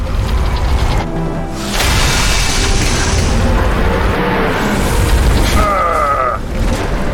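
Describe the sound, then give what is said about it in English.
The Mako, an armored vehicle in a video game, is dropped from a ship onto a planet's surface and lands with loud booming thuds and a deep mechanical rumble, followed by a rising whine of engines and servos near the end. “And we drop the Mako.”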